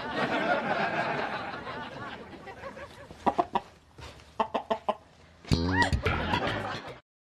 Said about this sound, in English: Thanks, that's very sweet, but that is not a chicken. Of course it is. I picked it out myself. Well, you picked out a rooster. Well, that would explain little Jerry's poor egg production.